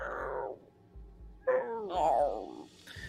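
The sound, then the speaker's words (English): A dying creature whimpers in a few short, wavering, high-pitched whines, moderately loud, with a low rumbling background underneath and brief pauses between the cries. “Oh, it's whimpering.”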